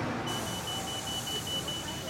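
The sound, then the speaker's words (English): A new eastbound route 49 city bus in Detroit beeps during boarding, a steady high-pitched tone sounding continuously over loud engine rumble and busy street noise, with indistinct voices mixed in. “For this group, it's time to board the eastbound 49 bus and head back to Southwest Detroit.”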